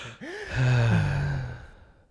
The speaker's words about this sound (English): Yeah, why are we breathing so weird on here?